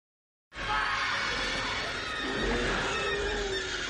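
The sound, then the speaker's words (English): A loud, high-pitched monster squeal bursts in after a brief silence and holds for several seconds, a harsh, wavering screech with no one talking over it. “It was that high-pitched squeal that made me think that it probably wasn't, but yeah.”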